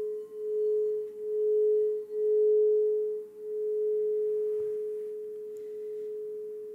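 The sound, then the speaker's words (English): A meditation bell, rung to bring awareness back at the end of a guided meditation, rings out in a long, steady mid-pitched hum, its sustained tone pulsing in slow, wavering swells as it gradually fades. No one speaks. “And as I ring the bell, just on your own time, bringing your awareness back into the room.”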